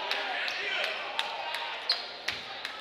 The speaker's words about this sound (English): He's dribbling up court, just getting to half court now.